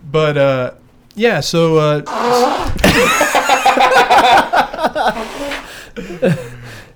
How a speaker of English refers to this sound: That's legit what it sounds like when I blow my nose, ladies and gentlemen. That's great. What's funny is, like, I started that as a kid, as a joke. I figured out I could, like, make a horn noise whenever I blew my nose if I did it a certain way.